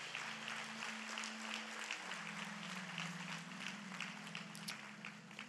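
A large church audience inside an auditorium applauds steadily, dense overlapping claps for several seconds, with a low sustained organ-like tone humming underneath.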